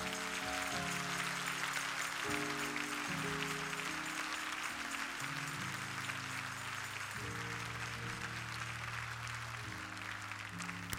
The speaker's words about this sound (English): Every time you see somebody step in the aisle, clap your hands.